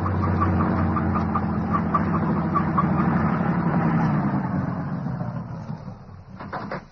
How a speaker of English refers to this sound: The truck has no headlights on it, but it's going to pass right by us.